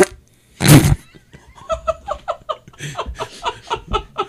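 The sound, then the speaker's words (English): A loud, brief spluttering raspberry made with the mouth to mimic a fart, followed by a run of rhythmic, breathy laughter. “I've always wanted a label maker that made little fart noises as you printed the label.”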